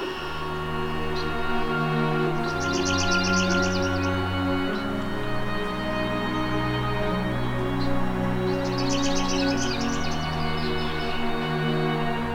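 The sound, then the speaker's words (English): Two buzzy, high-pitched trills of a palm warbler's song, each lasting about two seconds, sound several seconds apart over a steady low background hum. No one speaks. “Their song is a lazy, buzzy trill that can sometimes get confused for the song of the chipping sparrow.”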